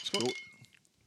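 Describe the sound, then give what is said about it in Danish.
A quick clink of glasses touching in a toast, leaving a thin high ring that fades over about half a second, with a voice sounding briefly at the same moment. “Skål.”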